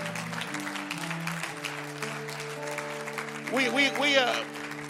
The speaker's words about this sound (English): Come on, give the Lord a great clap offering.